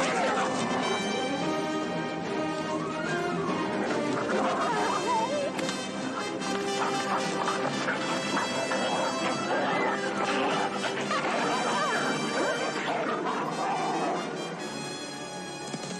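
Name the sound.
dogs barking and attacking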